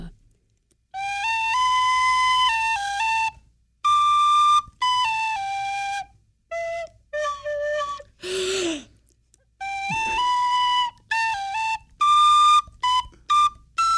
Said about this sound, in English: Well, I've been practicing on my tin whistle.